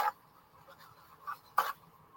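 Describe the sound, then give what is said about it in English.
Soft papery rustling from a paper towel being handled for cleaning a model car with alcohol, with a few brief crinkly bursts and one louder crumple near the end, otherwise quiet. “So I'm just going to get a paper towel here.”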